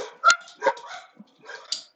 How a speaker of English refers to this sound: Hold on 1 second. Let me release the dogs. All right. Why don't the Release the hounds! two of you go downstairs, huh? Go downstairs. Go say hi.